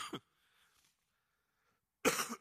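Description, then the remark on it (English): Two loud coughs, a short harsh one at the start and a heavier burst at the end, separated by near silence with only faint low murmuring in between. “Let me cough before I do that.”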